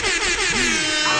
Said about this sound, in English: Can we get an air horn, please?